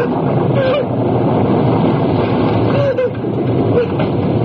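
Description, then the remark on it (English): Heavy pouring rain from a storm roars in a loud, dense, unbroken hiss for the whole stretch, with a few faint, brief tonal murmurs surfacing over the downpour. “It's pouring. You two are sitting here with the rain dribbling down your necks.”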